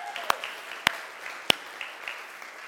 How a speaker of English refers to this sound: Can we give Noah a giant round of applause?